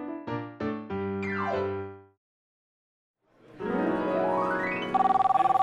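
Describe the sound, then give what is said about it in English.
A new phone's ringtone plays: a quick run of bright electronic notes and a gliding tone, a short pause, then a rising synthetic sweep ending in a rapid warbling ring, clear with no talking. “Yeah, I'm sorry I missed your call. I just got a new phone.”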